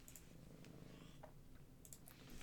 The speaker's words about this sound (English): Purr, kitty, purr.